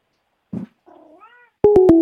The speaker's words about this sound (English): Did one of your cats just call in? That was definitely one of my cats, right? It sounded like one of your cats. Yeah. Which one is the cat that always comes in and, like, meows and you try to get him on the mic?